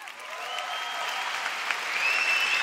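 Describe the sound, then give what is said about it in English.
Sustained applause from a conference audience, a dense steady wash of clapping that holds at an even level for a few seconds, with faint whistles cutting through near the end. “Let's clap that shit up because it's true.”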